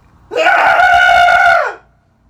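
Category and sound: human body sound, group cathartic scream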